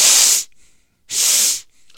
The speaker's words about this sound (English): Listen to him speak. Every time he's got a big thing coming, that's all you hear is this. I remember hearing that during one of the debates with Hillary. And I remember making a comment about it. Oh, my God, what's with the sniffling? Blow your nose.